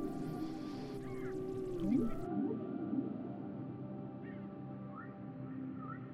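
Whale song with low, gliding moans and a few higher whistling swoops, drifting slowly over a steady deep underwater hum. No one speaks.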